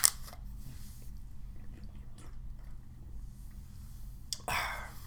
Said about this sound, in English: Just popped the seal on that good high-quality H2O.